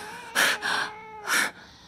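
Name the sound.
cat screaming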